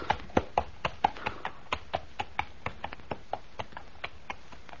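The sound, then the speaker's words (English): Horse hooves clip-clop in a brisk, steady rhythm, around twenty sharp hollow knocks over a few seconds, clear, with no voices. “Shall I take the horse to our stable, sir?”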